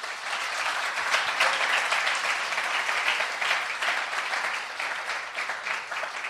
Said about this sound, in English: Why don't we give her a round of applause for that?